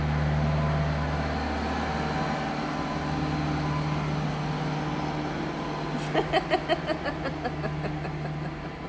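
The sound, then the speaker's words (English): A heavy truck passes outside near construction, rumbling steadily with a deep engine drone, and near the end a quick run of sharp, regular clanking pulses cuts through the noise. No one speaks. “We got construction. Pause it. We have a truck coming.”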